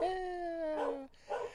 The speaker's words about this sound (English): And that, of course, is Mahler, the fake news dog. That's right, Mahler. Bark it out. Bark it out.